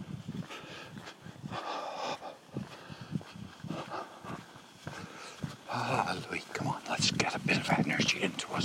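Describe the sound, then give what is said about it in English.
A big dog at house number 63 barks repeatedly in short bursts while people talk quietly over it. “House number 63. Has a noisy dog.”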